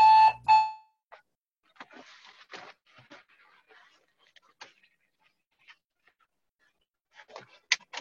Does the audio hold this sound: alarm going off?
yes